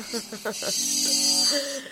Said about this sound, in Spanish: Me encanta ese sonido a chicharra.